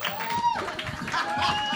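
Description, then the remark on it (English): A crowd claps and cheers steadily as a performer introduced as Amelia Earhart is welcomed to the stage, with whoops and high shouts rising over a dense wash of applause that holds at an even level throughout. “Keep it going for it.”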